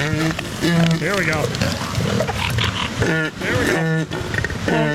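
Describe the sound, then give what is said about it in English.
Elephant seals give loud, deep, honking mating calls in repeated bursts, their rough brassy tones overlapping, with a person briefly speaking over them. “You're currently listening to Elephant Seal Mating on the Kiss Morning Freak Show.”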